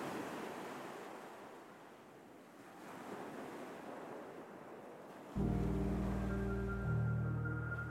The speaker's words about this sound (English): The keys had been discarded near a stony cliff that dropped into crashing, rocky surf.